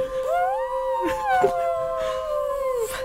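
Whale song played from a CD player during a stage show: one long, mournful moan that rises, holds and slowly sinks for about three seconds, with a couple of soft knocks underneath. It sounds steady, with no talking.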